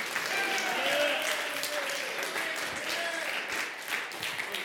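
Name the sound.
audience clapping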